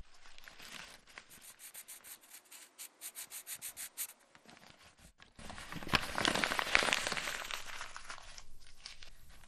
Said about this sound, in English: Well, I'm trying to practice these characters that you gave me. Oh my God, all this on paper?